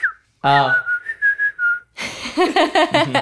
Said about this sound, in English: Can you whistle? I can like whistle, but I can only like suck in and whistle. Like I can't blow out and whistle. Can you try?